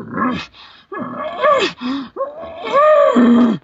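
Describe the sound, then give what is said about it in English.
A series of throaty, moaning grunts (glunks) and breathy pants blown through an elk call tube, four loud bursts in quick succession with no talking, a human voice imitating an elk. “I'll do them through the tube. I'm not doing it right there, but then I'll glunk and I'll start panting again.”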